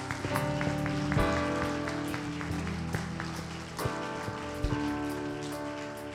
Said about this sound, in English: From this moment on, you're forgiven. I think that's something to clap about. I think that's exciting.